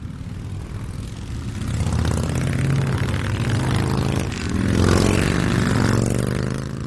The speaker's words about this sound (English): They were a roaring wave of Harley-Davidson motorcycles sweeping across the country.